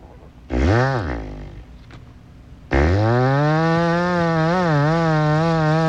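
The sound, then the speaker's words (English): A man mimics a chainsaw live on the radio, using his mouth while holding the palm of his hand up across it. A short buzzy rev rises and falls, then after a pause comes a loud, sustained rasping drone with a wavering pitch, unaccompanied. “… did that by holding the palm of his hand up across his mouth”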